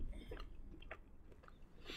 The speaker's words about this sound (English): Can you guys hear it? Can y'all hear it clicking against my teeth? Ow.